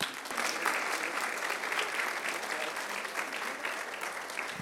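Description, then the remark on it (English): An audience of women applauds a guest speaker steadily, a dense, even patter of many hands clapping at a constant moderate level for several seconds with no voices breaking through. “Let's clap.”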